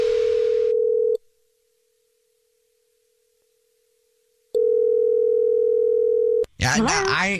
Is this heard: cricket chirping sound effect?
no